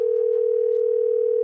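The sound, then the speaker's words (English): A steady, unbroken telephone dial tone hums at an even volume for the whole moment, clear, with no voices over it, as a call is placed to a man in Kansas City. “Let's call and see if he sounds better this morning.”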